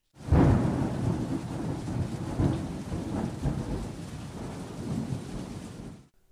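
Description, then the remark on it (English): Steady rain hisses across the full range while deep thunder rumbles roll underneath, swelling loudly near the start and again midway, with no voices, before cutting off abruptly. “Yes, you are correct. Thunder and rain.”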